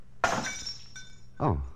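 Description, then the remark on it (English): A drinking glass of water, knocked out of someone's hand, hits the floor and shatters with a sharp, bright crash, shards tinkling briefly afterward before a short vocal exclamation follows. “I must have knocked the glass out of your hand.”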